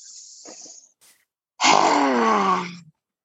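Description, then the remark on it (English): A person imitates a lioness roar: after a breathy hiss and a small click comes one loud, raspy, drawn-out vocal roar that slides downward in pitch and cuts off after about a second. “You can make sounds like a lioness.”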